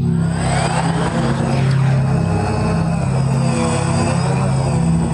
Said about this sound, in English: so I need to find the old drone sound effect. Here we go.